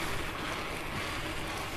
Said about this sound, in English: Oh man, it's beautiful. They've got the water running high again in the river.